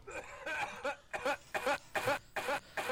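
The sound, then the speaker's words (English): A rapid run of about eight sharp, throaty coughs in a steady rhythm, fairly loud, each burst short and voiced, with no talking around them. “Excuse me, I was coughing at the beginning.”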